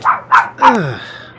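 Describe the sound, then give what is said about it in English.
A female dog named Miss Cuddlykins barks three times in quick succession, loud, the last bark stretching into a falling, whiny yelp that trails off. “I mean, she's my dog.”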